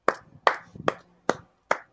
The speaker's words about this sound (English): I'll clap for him. I think a lot of us will, man. A lot of us will.